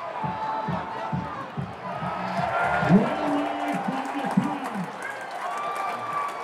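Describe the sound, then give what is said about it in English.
A stadium crowd cheers in a loud, sustained roar, with individual shouts and whoops rising and falling over the dense wash of noise throughout. “And this crowd comes unglued.”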